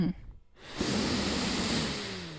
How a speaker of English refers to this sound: I'm going to go out sniffing my used copy of The Hobbit.